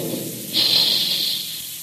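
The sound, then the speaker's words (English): A low, rumbling burst gives way to a loud, steady rush of high-pitched hissing steam that lasts about a second before easing off: big Quaker cereal guns firing to puff wheat and rice. “Remember the sound of those big Quaker guns the next time you sit down to a tempting dish of crisp, crunchy puffed wheat or puffed rice for breakfast.”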